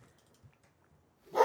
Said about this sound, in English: Oh, sounds like there's a dog in the room. Shut that fucking dog up.